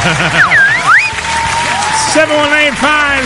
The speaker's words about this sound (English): Thank you very much. Another round of applause for me.